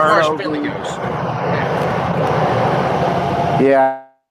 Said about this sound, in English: because wherever you're at, it was really loud. It sounded like an airplane. Blew me away.